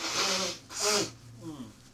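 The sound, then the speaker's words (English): Two loud hissing bursts of someone blowing their nose right into the microphone, the second one wetter and longer, followed by a brief, faint voiced murmur. “No, I was blowing my nose. I was just saying, you know, like a mic into me blowing my nose.”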